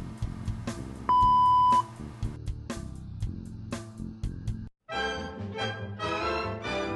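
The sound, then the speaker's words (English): A single loud, steady electronic beep from an answering machine holds for under a second, set against a busy musical backdrop that briefly drops out and returns. “Please leave your message after the beep.”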